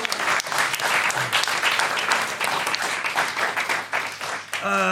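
An audience breaks into steady, dense applause, many hands clapping at a constant loud level for about five seconds, with a short tonal sound cutting in right at the end.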